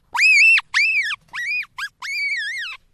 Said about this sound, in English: And that got me asking, you know, what's going on with this scream? What's going on with this sound? Ladies and gentlemen, the marmot scream.